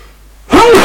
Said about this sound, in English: And I'm going to sneeze, so let's get that out of the way first.